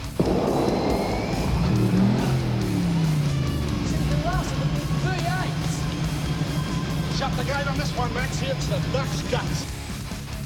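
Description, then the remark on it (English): A race car engine roars loudly and continuously, its pitch rising and falling as it revs, with a noisy crowd-like wash and faint voices mixed in throughout. “Just listen to 351 work.”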